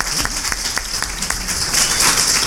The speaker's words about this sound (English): How about a round of applause for early retirement?